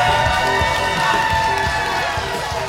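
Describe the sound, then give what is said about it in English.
A live audience cheers and whoops in a steady, loud roar of many voices, sustained without a break for a few seconds, with no single speaker standing out. “We definitely did not ask them to cheer when we started the show.”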